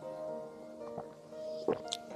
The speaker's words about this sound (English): Sorry, I need to take that sip.